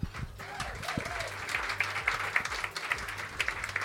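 An audience applauds steadily for about four seconds, a dense crackle of many hands clapping at once, with a brief high whoop or cheer rising near the start.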